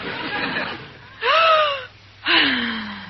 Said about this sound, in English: What is that? Her breathing exercises, Maestro. In yogi, they say if you breathe deeply, all the poisons leave your system and you can think clearly.